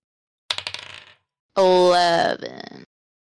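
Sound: dice being rolled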